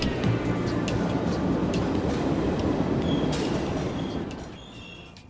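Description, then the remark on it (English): A London Underground train rumbles loudly and steadily as it arrives, with brief high brake squeals near the end as the noise eases and begins to fade. “Next train arriving.”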